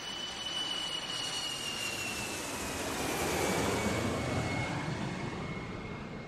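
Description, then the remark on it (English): A jet airliner, British Airways Flight 149, roars as it comes in to land in Kuwait, a high turbine whine sliding slowly downward over a broad, steady rumble that swells slightly midway. No voices. “So, Flight 149 landed in Kuwait.”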